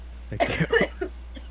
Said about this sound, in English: Editor, put up the clip of Mr. Robinson from Gumball, from The Amazing World of Gumball, coughing up his internal organs.